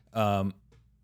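A single big yawn, voiced and close up, loud and brief, followed by a faint breathy trail and quiet room sound, with no talking.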